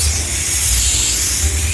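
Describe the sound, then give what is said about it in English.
A steady aerosol spray of Scotchgard fabric protector hisses continuously for a couple of seconds, loud and even, with a faint low rumble underneath and no one talking. “Okay, give me the Scotch Guard spray.”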